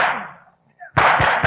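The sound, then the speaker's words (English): Gunfire: a loud crack fades into a brief lull, then a dense, rapid volley of sharp shots erupts with about three heavy, evenly spaced bangs cutting through the clatter, as men behind a barricaded door fire at police outside. “Get down. They have guns out there.”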